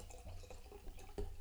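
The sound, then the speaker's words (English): Liquid pours into a glass, a continuous trickling gurgle with a few splashy bursts, fairly quiet and heard on its own without talking. “Let me pour some more for that.”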